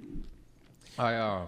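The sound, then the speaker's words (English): Muffled chewing of gnocchi while the eater covers the microphone, faint and squishy for about a second, before a person's voice abruptly starts speaking over it. “I'm literally covering the microphone over here while I chew.”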